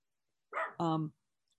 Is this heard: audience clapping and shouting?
no